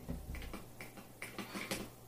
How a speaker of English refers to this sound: Recording cat.